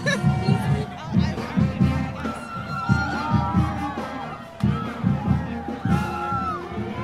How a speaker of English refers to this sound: Cheering the freshmen on were peer advisors. PAs formed a sort of tunnel for the new students to run through. They clapped and cheered along with the marching band, too.